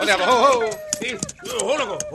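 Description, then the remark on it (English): A dog whines in two drawn-out, wavering cries, its pitch sliding up and down, with a few short clicks and scuffs in the brief pause between them. “That is the whine of a dog. Sounds as if it is in trouble.”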